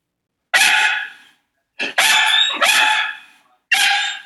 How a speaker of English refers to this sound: Oh my god, we interviewed a dog. Woof. A dog. Woof, woof.